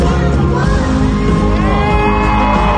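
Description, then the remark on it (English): A large crowd at a singer's concert cheers loudly and continuously for a 7-year-old girl from the front row singing on stage with him. Whoops, yells and shouts rise out of a dense roar of voices that stays at a steady, high level throughout. “Crowd's going crazy for her.”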